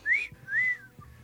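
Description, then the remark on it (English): A two-part wolf whistle used as a catcall: a quick upward sweep, a brief gap, then a longer, sustained note that slides down and trails off. The whistle is loud and clear, with no talking. “But if you, like, whistle at them, give them the old, then they'll be more likely to run in their house.”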